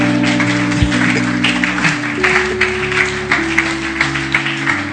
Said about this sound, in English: The sound there is not bad, it's very good. Let's clap for them for the sound.